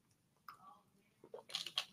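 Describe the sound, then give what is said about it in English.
A few soft, wet mouth sounds of someone sipping water, a brief slurp and swallow clustered near the end after a single light click, with no talking over it. “I'll take a sip of my water.”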